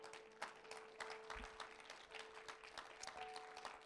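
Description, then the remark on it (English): A church audience claps in praise to Jesus, a dense, steady patter of many hands with scattered sharper claps standing out, moderately loud and with no one speaking. “Let's give Jesus a hand clap of praise.”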